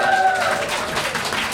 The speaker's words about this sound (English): Yeah, give your mama a round of applause here.